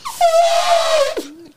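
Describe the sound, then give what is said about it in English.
A voice imitates an elephant's trumpet: one loud, brassy, high-pitched blare held for about a second, sliding slightly down before dropping abruptly into a short, lower grunt. “That sounds when I try and do elephant noises.”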